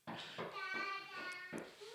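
A child knocks on a door, four or five uneven thumps spread over two seconds, while a high-pitched young voice vocalizes a sustained, wavering sound between the knocks.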